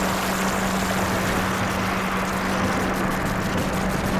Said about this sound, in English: I want to modulate that noise, or amplitude modulate that noise with the sine wave out of the Pico R&D. So what it sounds like regularly.